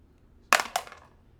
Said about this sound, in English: It was a 6. He rolled a d6. I rolled a d6, and it's a 6, and there's a reason for that.